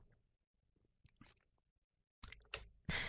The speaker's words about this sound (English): Pardon me, I need a drink of water.